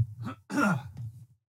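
A raspy throat clearing in a couple of rough bursts, with a louder, harsher middle push that trails off into quiet.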